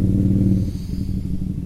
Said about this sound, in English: There's a motorcycle crew behind us. It looks like there's maybe a dozen motorcycles getting ready to take